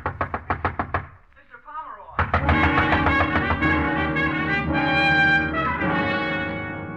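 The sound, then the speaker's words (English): A quick burst of about eight loud, heavy knocks from a bellboy pounds on a door, insistent, then stops; after a short pause a full, dramatic music swell takes over. “The bellboy out there pounding on the door.”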